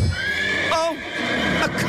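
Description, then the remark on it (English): A horse whinnies in a shrill, wavering burst over a steady outdoor background, with hooves clip-clopping faintly beneath and another brief neigh near the end. “Horses.”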